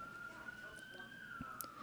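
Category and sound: vehicle, emergency vehicle siren passing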